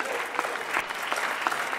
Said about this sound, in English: So first of all, welcome, and we mean that sincerely. You're welcome here. Everyone's clapping that you're here because we really do want you here.